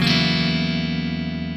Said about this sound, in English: I'm playing an F sharp major bar chord, and then I'm taking the bar off the guitar.